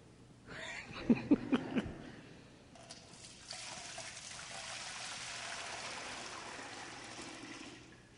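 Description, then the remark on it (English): A few quick metallic clanks ring out, then water pours steadily into a bucket, a continuous splashing rush that lasts for several seconds with no voices. “My old relatives told me out in western Iowa that when they'd go out in the field to do work, they'd bring a big bucket like this of water from the well.”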